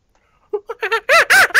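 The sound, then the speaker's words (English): Someone imitates a monkey, starting with a few quick, soft hoots that build into three loud, shrill screeches, with no other sounds. “That was a good monkey sound.”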